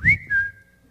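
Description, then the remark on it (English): A person whistles an imitation of a phone's Periscope broadcast notification alert: a quick upward sweep into a steady high tone, held about half a second, then fading out. No speech. “So every time we press the Periscope broadcast button, if people have their notification on, somewhere around the world, 10,333 phones are going...”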